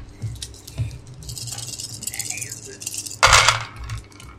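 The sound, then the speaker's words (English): Dice rolled for an athletics check tumble and clatter across a hard surface: scattered light clicks and rattles build to a louder, rough burst of clattering before settling, with a low murmur underneath. “I've been very nice about dice rolls so far.”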